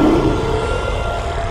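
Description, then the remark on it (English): A monster roar sound effect for a monster in the basement: a loud, deep, rumbling growl that holds steady for about a second and a half, with a slightly higher snarling tone at the start and no voices. “There's a monster in the basement.”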